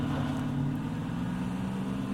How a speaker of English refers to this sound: Pull myself up, slurp up what I can, and race to the passenger side of the ride, barely getting in as the truck lurches forward and away from the scene.